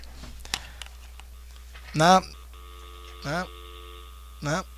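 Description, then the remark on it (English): A studio telephone line connects as a call is put through live, with a faint steady hum, followed by three short, warbling, voice-like bursts spaced about a second apart, thin and filtered as if heard over the phone. “Is there anyone on the phone? Come on, let's go live. Hit call.”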